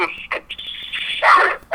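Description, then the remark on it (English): The neighbor's dogs barking and yipping: short sharp bursts mixed with a sustained high-pitched whine, the loudest burst near the end, fairly loud throughout. “Oh, the dogs are barking.”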